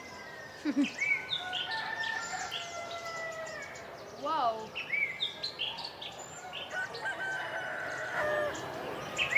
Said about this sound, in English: These roosters are wild. Literally.